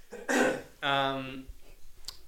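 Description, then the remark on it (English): A single loud cough bursts out harshly into the microphone, then trails into a voiced, throaty rasp before quieting, with no one talking over it. “I just coughed into the microphone.”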